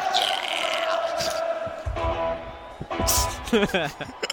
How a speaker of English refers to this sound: But this is part of the song. The audience? Mm-hmm. The build-up is absolutely part of the song. I like the people yelling.